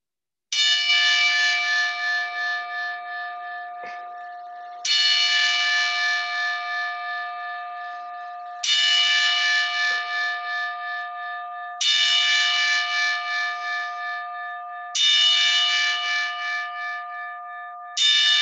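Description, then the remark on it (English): A single loud bell tolls slowly and evenly, about six strikes, each ringing out for several seconds before the next, with no voices: a ten-bell salute sound effect played on a phone. “but I would just like to take, if I hit the right sound effect on my phone, I would like to just take a moment, have a moment of silence, and do a 10-bell salute and dedicate tonight's episode in memory of my mentor, Michael Corriston.”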